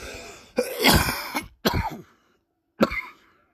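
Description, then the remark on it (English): A harsh, loud coughing fit: one long hacking cough followed by two shorter, sharp coughs with brief pauses between them, no talking. “Hopefully that ain't the COVID.”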